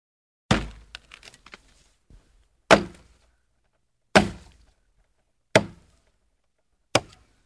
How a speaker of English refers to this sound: Chopping wood.